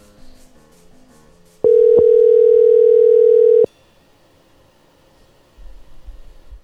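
A loud, steady telephone dial tone, heard while placing a phone call, hums for about two seconds, opening and closing with sharp clicks, set against a quiet background with a low rumble near the end.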